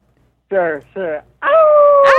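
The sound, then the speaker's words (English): A person imitates a wolf howl: two short yelping whoops, then one long, loud, steady howl, ending with a breathy break. “Can we get a howl?”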